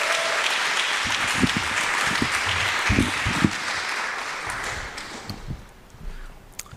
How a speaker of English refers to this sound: Let's give him not just a smattering, but a real applause.